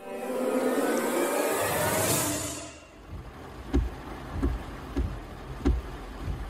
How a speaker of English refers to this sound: Now you're going to tell me how to drive. It's just a little rain. It's getting worse.